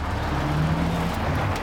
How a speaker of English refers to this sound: Bright lights. Is that... car. There's a car in the tunnel! Look out!